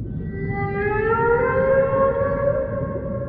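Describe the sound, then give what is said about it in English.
A voice imitates a humpback whale call with one long, sustained, siren-like wail that slowly rises in pitch and holds, over a steady low rumbling background. “To determine who's going to go first, though, I want each of you to give me your best humpback whale impression.”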